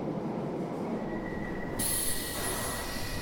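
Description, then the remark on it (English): A train rumbles steadily and loudly along the rails, with a thin metallic wheel squeal running through it and a burst of hissing noise joining halfway through. No one speaks. “10 minutes walk to the station, 10 minutes on the train, 10 minute walk to the hospital.”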